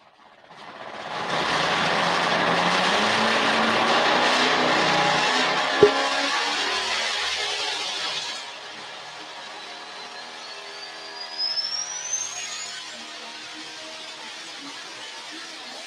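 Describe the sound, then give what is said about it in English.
A Duramax-powered diesel truck engine roars loudly and steadily for several seconds with a gritty, straining tone, then drops to a lower, rumbling idle-like drone with a brief rise in pitch. “The Duramax powered truck.”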